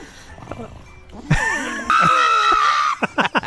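A dog screams loudly while its nails are being trimmed: drawn-out, shrill wailing with wavering pitch, then a few short, sharp yelps at the end, after a quieter start.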